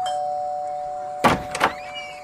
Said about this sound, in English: Get up to that door and ring the bell. This is the last house, you morons.